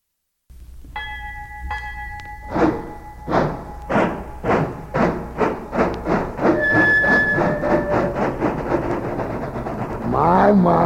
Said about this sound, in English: My. Listen at that rhythm train, boy. Boy, I bet all them hobos are all set under them rides.